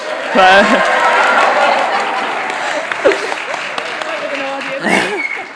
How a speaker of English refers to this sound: Round of applause. Come on.